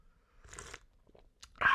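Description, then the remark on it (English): Sipping of coffee: a soft, airy slurp, a brief pause with faint mouth clicks, then a sharper, louder slurp at the end. No one speaks. “I'm going to take a sip of coffee. ASMR.”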